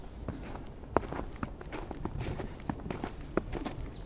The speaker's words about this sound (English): It's a beautiful winter day, and the crisp snow is beneath my feet. I've been walking for about an hour now.